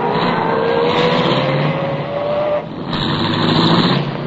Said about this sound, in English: I started the car, and the moment I pulled away from the curb, I had company again.